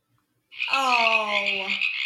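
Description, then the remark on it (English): A single drawn-out frog croak, buzzy and reedy, rises abruptly after a brief silence and holds steady for over a second, loud with no other sounds around it. “Those are frog noises.”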